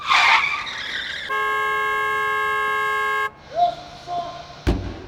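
A harsh tire screech opens as a car nearly hits a woman jaywalking in a city, followed by a long, steady car horn blast lasting about two seconds, then some faint squeaks and a sharp thump at the end.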